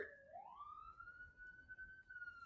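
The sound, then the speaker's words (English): A siren wails steadily, rising in pitch at the start and then holding a sustained tone, muffled, with faint background noise. “there's also a siren going on.”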